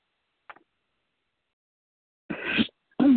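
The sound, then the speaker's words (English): A single sneeze in two bursts, a breathy build-up and then a sharp, forceful release, following a faint click in otherwise quiet surroundings. “Bless you.”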